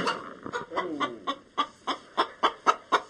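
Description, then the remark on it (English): A big 9-pound chicken, the size of a small turkey, clucks in a steady run of about ten short, throaty clucks, starting as a low muttering and settling into an even, insistent rhythm. “The chicken is so big, 9 pounds, the size of a small consumer turkey, that she has to pull the camera back.”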